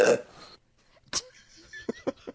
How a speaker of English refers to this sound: Maybe she can give us a fresh one. Maybe. It sounds like she was kind of saying Jeff through a burp, actually.